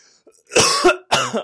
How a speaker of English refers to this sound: What the fuck was that? You just like cut out for me. Oh God, you're right. I just totally freaking choked on my drink